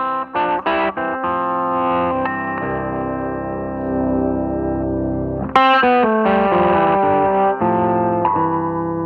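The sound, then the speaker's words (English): An electric guitar plays through a modulation pedal called the Emperor: sustained chords and picked notes shimmer and waver with a chorus-like wobble and slight grit. A sharp new strum rings out partway through, with no talking. “That's the Emperor.”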